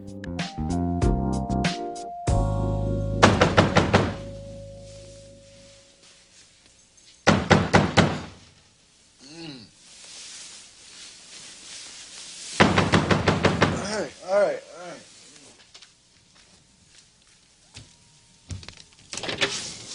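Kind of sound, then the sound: impact, banging on a door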